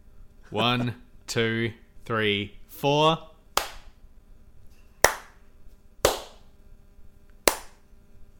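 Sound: hand claps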